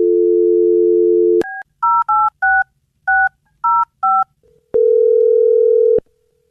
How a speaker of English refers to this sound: Well, I'm going to dial her phone over right now and see if we can figure out what happened. Here we go.